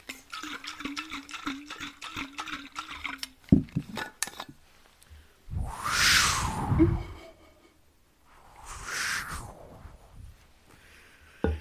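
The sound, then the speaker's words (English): A voice imitates rushing water with two long, breathy whooshes that sound more like gusting wind, preceded by rapid clicking and rattling mouth noises, fairly loud. “I'm trying to make water noises. I can make water noises.”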